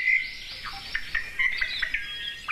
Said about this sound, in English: Yellow-fronted canaries are also one of the many non-native bird species that inhabit the lowlands